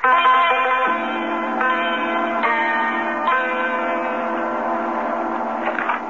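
A large bell rings loudly, struck several times with each deep, resonant toll overlapping the long humming sustain of the last. No voices are heard.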